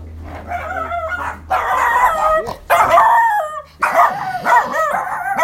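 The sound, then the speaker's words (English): A dog barks loudly in several long, strained bursts with a wavering, almost howling pitch, separated by brief pauses and with no one talking. “Bit of dog barkage.”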